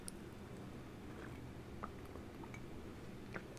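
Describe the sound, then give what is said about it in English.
Faint, sparse clinks of a cup of tea that is getting cold over a steady low background hum, with a few soft sipping and handling noises spread across the few seconds and no one talking. “And I'm just going to have a sip of tea because this is getting cold.”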